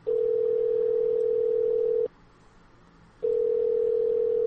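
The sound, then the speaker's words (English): A steady, loud telephone tone hums for about two seconds, falls silent for a second, then returns, like a line tone heard through the handset, as a call is placed to a man's phone number. No one speaks. “He gave us his phone number, so why don't we give him a call and talk to him about it in person?”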